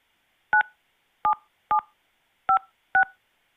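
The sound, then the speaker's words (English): Five short telephone keypad DTMF tones beep one after another at a steady, slightly uneven pace, each a crisp two-pitch electronic chirp, with silence between them and no voices, entering a zip code on a call to Minute Key Locksmith Services. “Please enter your zip code, and we will get you in touch with a local locksmith that can help provide you with the service that you need.”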